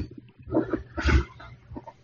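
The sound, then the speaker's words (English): A dog makes a run of low growling, whining vocal noises in uneven bursts, with one louder, rougher grumble in the middle before trailing off into softer whimpers; the dog wants to leave the room. “No, it's my girlfriend's dog. Oh. He wants to leave the room.”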